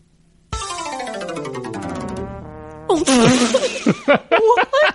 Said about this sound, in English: I was with it until the fart at the end.